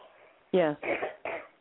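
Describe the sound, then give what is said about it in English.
Three harsh, barking coughs from a person with bronchitis, in quick succession and fairly loud, the first the strongest, with no talking around them. “I've still got bronchitis, so I'm still coughing a bit.”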